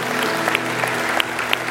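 An audience claps steadily, a dense wash of many overlapping hand claps with sharp individual pops standing out, sustained at an even, fairly loud level throughout.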